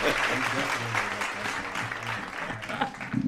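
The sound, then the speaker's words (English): A steady round of applause for Dame Dash, dense crackling clapping that stays loud for the whole few seconds, with faint voices and whoops mixed in underneath. “Round of applause for Dame Dash.”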